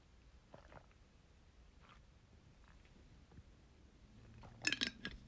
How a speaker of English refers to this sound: I'm gonna have a yerba mate sip, just a little gulp of it.